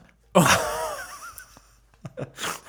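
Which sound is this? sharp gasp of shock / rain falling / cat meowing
sharp gasp of shock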